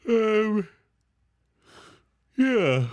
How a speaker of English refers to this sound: That's what you get for yawning during your promo time.